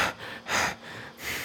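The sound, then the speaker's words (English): A voice imitates heavy, choking breaths: three loud, rasping gasps in quick succession, breathy, with no other sounds around them. “Breathing so heavily.”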